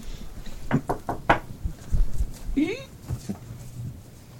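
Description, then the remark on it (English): Four quick, sharp knocks rap on the door of a room in a larger suite in a short, even burst, followed by a brief rising vocal sound and faint murmuring in the background. “For sake of for ease, I'll knock on the door of the room he's in.”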